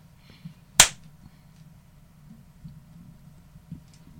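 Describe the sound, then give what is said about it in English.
A single sharp hand clap, made to synchronize the audio, rings out loud, a bright crack against otherwise quiet with faint background murmur. “Before we start, I have to do a little clap to synchronize the audio.”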